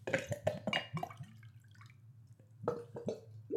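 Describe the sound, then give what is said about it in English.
Water pours from a Gluggle jug, which is designed to glug as water is poured, in a run of quick, hollow glugs, about five in a row, then a short pause before another burst of bubbling gulps. Fairly clear, with no talking. “It's designed in a certain way to Gluggle as you pour water.”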